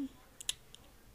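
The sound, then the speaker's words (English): A few quiet mouse clicks, two close together then a softer one, with no talking, as someone clicks through an online 5 Love Languages singles quiz, selecting gender, age and country. “Wait, did you, okay, I just clicked singles quiz, and I'm clicking my gender, my age, country.”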